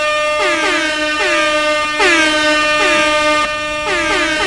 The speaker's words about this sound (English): Let air horns ride.